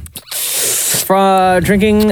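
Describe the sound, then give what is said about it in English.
A voice imitates drinking a juice box by sucking through a straw: about a second of steady airy hiss, then a squeaky, pitched slurping tone that wavers briefly before stopping. “Drinking a juice box. Oh, sucking through a straw. Yes.”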